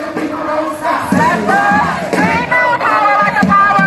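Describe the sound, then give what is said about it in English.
A crowd of about 50 to 60 protesters on a Detroit Will Breathe march in Detroit chants a catchy chant together in loud, rhythmic unison, voices rising and falling in repeated phrases over a steady wash of crowd noise. “I wanted to let them get their little catchy chant in.”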